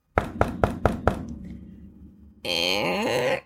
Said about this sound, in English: Knock on the door. No, you knock on the door. Knock on the door. Oh, I'll do it.